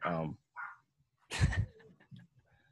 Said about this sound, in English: Oh my God, my dog is whining at the door right now. Let me go let the dog in.